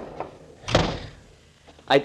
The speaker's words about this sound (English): Shut the door after you come in